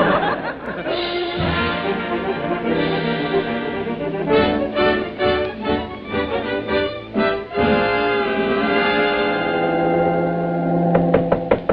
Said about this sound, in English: Somebody's at the stateroom door. Must be the steward.